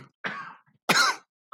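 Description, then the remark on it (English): Two loud coughs into a microphone in quick succession, the second harsher and sharper than the first, with a brief silence between them and no talking. “Dude, just cough in the mic, why don't you?”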